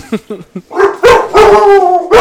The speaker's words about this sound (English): What was that? The dogs?